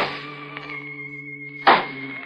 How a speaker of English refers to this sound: I picked up the cane and began tapping on the floor.